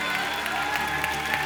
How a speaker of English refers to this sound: Somebody clap your hands and love Jesus right now.